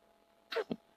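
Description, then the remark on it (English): A single close, sharp sneeze bursts out suddenly, a quick intake followed by an explosive release, with near silence before and after. “God bless you.”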